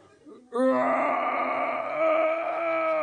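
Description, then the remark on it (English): A human voice imitates a bear roaring while giving birth: one long, strained, wailing groan that starts abruptly after a brief low murmur and holds loud and sustained for over two seconds. “Pushing in, we hear the roars of a bear giving birth.”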